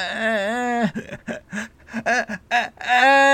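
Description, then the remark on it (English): A storyteller's voice imitates how the story character Vihad cried like a little infant losing its breath: a long wavering wail, a run of short choppy gasping sobs, then another drawn-out wail. It is fairly loud and heard alone. “He started to cry like a little infant.”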